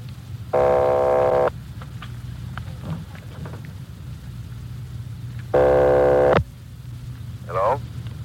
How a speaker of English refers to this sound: Keep ringing, 761. They're ringing the number, Sergeant.